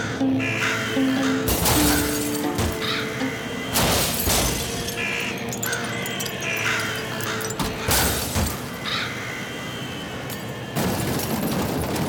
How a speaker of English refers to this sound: Crows crash into the cars like a hailstorm. I can hear the tires being shredded to pieces and glass shattering.